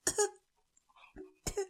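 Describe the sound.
A person vocally imitates a nervous little cough in a tense, silent bar scene of a film: two short, sharp bursts about a second and a half apart, with a faint murmur in the hush between, fairly loud.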